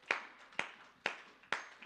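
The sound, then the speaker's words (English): A group claps hands in unison as a hand clap of praise to God, four sharp, bright claps landing on a steady beat about half a second apart, each ringing out briefly. No one talks. “In Jesus' name, can we give him a hand clap of praise this morning before we're seated?”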